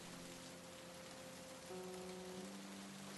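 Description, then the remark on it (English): Steady rain pours down in a dense, even hiss, fairly loud throughout, with a faint low hum underneath and no voices. “When they called me and told me Hank, the world's greatest, had been murdered, it was raining.”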